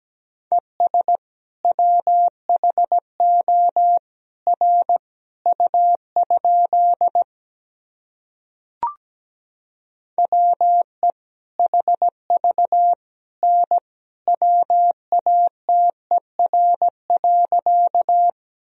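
Morse code sent at 17 words per minute: a steady mid-pitched beep keyed into short and long pulses, with a pause and a faint click partway through before the keying resumes.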